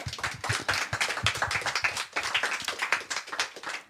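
Applause from an audience, with dense, steady clapping from many hands filling the whole stretch at moderate loudness, briefly dipping midway before continuing.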